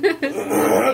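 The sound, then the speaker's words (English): A sharp hiccup jerks out at the start, then a second quick gulp follows, trailing into a steady voiced sound from the throat. “So in this episode, I'll have the hiccups.”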